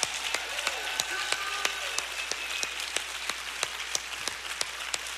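An audience applauds steadily, a dense wash of many hands clapping with sharper individual claps popping out irregularly throughout, moderately loud with no voices.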